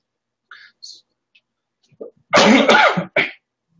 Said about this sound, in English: I caught some cough.